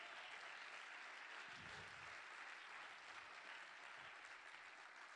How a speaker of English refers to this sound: Did you just get some wisdom this morning? Then clap your hands if you are happy this morning.